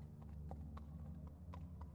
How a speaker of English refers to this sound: And then he heard the horse stop outside the front door.